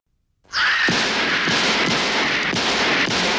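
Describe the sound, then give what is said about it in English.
After a moment of silence, a loud, dense roar kicks in and a string of about five or six gunshots cracks through it at a steady, evenly spaced rhythm, in a trailer for the Universal Pictures film Halloween 2. “I shot him 6 times. I shot him in the heart.”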